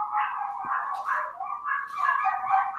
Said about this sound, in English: Gracious. Wow. Somebody's got a worse dog problem than I do. What the fuck is going on there? Wife just got home and my dogs are going bananas.